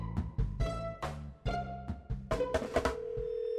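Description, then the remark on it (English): A short series of bright electronic telephone tones, like a call being dialed and starting to ring, clear with a steady rhythm over a low background hum, with no voices; a phone call being placed to a congressional reporter at the Capitol. “I picked up the phone and called congressional reporter Mike DeBonis over at the Capitol”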